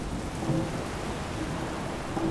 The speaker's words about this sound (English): But as your footsteps echo, one after the other on the grating beneath you, and the sound of the storm roars outside, and the shadows shift, you begin to wonder who or what you have cornered down here.